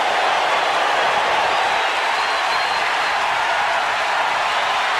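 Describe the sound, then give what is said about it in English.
In a played video, Dodgers fans in a big stadium cheer as Kirk Gibson comes up. It is a steady, dense roar of massed voices and clapping, loud and unbroken for about five seconds, with no one speaking over it. “Just letting the crowd do its thing.”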